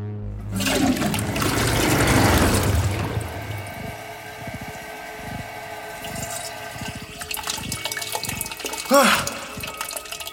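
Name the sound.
toilet flushing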